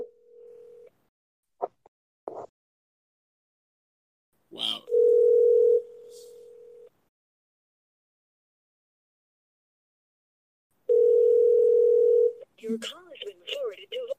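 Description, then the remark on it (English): A steady telephone dial tone on a phone call being answered sounds in several stretches, broken by a few clicks and a sharp rustle, before voices start talking near the end. “Hold on, I gotta answer this.”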